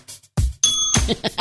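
A single bright bell ding rings out briefly, its metallic tone fading quickly amid bumps and murmured voices around it.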